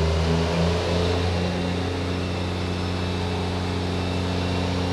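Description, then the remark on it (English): A diesel truck engine runs steadily on a dyno during Travis Richards's final dyno pull in the Power Challengers. Its deep throbbing drone holds loud, with a slight shift in pitch early on as the truck is warmed up and taken through a couple of gears to build wheel speed. “Truck's fired up. He's starting to get her going. Warm the truck up, get it through a couple of gears, get that wheel speed up so he can get himself into that test window.”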